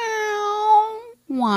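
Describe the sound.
A person imitates a cat's meow with a long, steady, drawn-out call, a brief pause, then the start of a second rising meow. Clear, with no other sounds.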